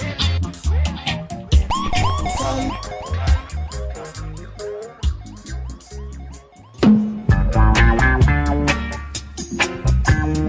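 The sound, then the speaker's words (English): A radio DJ's siren sound effect wails in quick repeated rising-and-falling sweeps over a loud bass-heavy backing, then cuts off as the next music track kicks in at a steady rhythm. “Like the next tune, which is coming right now after my sirens in.”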